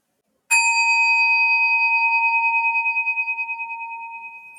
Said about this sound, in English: And I'm going to ring a bell and make a shift, but you, of course, are welcome to keep sitting.